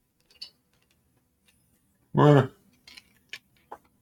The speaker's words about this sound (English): Hell yeah, chew that ice, brother.